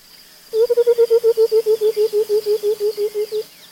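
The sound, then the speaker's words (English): A white-browed coucal's bubbling call: a rapid run of about twenty low, hollow hoots, evenly paced, that drift slightly downward in pitch and soften toward the end, with no talking. “This call, likened to the sound of water running out of a bottle, is common in many parts of Africa.”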